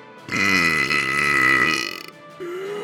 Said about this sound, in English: Everyone's hair blew back from the super burp, and let's be honest, they were pretty disgusted.